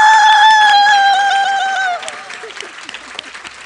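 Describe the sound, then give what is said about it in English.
At a poetry reading, a long, loud, high-pitched whoop rings out over a crowd's clapping for the event's former organiser, who is absent, for about two seconds, then the whoop stops and the applause carries on, steady and somewhat quieter. “If anyone's friends with Catherine, tell them I whooped for her.”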